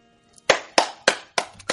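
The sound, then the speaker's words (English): Five sharp hand claps in a slow, fairly steady rhythm, each crisp and bright with a quick fade, clear and loud with no voices over them. “No, don't clap for it.”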